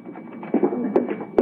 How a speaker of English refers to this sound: Let me lock the door, will you?